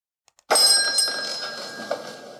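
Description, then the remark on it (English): Two faint ticks, then a bright bell strikes and rings out with sustained metallic overtones, slowly decaying over a couple of seconds, with a second light tap near the end. No one speaks. The bell marks the start of an economic commentary. “In future episodes, this bell sound indicates an economic commentary.”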